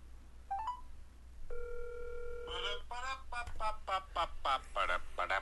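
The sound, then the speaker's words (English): A phone ringtone sounds: a few quick rising electronic chirps, then a steady sustained tone lasting about a second, followed by voice-like warbling sounds over a low constant hum. “So that is the ringtone.”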